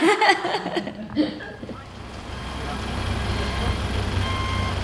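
A delivery truck full of fish pulls up outside Annaka; its engine rumbles low and steady, growing louder, with a faint reversing beep tone toward the end; brief voices and laughter come at the start.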